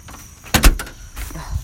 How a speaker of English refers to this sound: Lock the door. Fucking door.